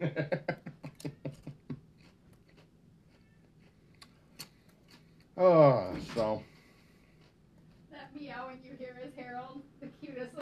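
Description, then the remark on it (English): A tailless cat named Harold lets out one loud, drawn-out meow that bends up and then down in pitch, after a run of quick, light clicking sounds, with a softer voice-like sound following. “Meowing you hear is Harold, the cutest little cat with no tail.”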